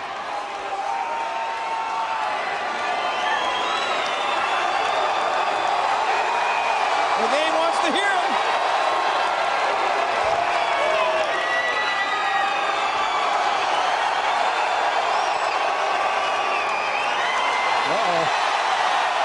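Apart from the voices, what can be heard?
arena crowd cheering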